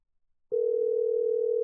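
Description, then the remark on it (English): After a moment of silence, a steady electronic phone tone starts abruptly and holds at an even pitch and loudness, like a call ringing on the line, with no voices. “Are you calling her again?”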